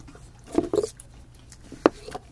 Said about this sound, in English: Mmm. This is good. Like cinnamon-flavored. Yeah. It really loses the Kit Kat flavor. You get the crunch, but...